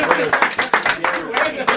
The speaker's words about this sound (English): I know, fair play, yeah. So fair play, round of applause.